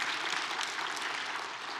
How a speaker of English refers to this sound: He designed us to find our identity and purpose in him. And you can clap.